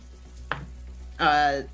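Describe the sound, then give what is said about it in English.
A short click, then a voice making a buzzy, rattling vocal imitation of dice rolling for two handgun shots in a game, lasting about half a second, fairly loud against a quiet background hum. “Dice sounds.”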